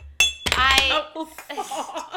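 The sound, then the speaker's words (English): Glasses clink together in a bright toast as people celebrate each other, a few sharp ringing taps, followed by people chatting and laughing in the background. “You were hearing glass clinging because we all love to, like, celebrate each other.”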